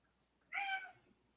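A single cat meow, short and fairly clear, rising and falling over about half a second against a quiet background, with no other sounds around it.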